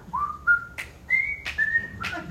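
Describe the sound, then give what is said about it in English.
A person whistles a cheerful tune of several sustained, rising notes, with short breathy bursts between phrases, heard clearly over a low background rumble. “And he had to be whistling, you know.”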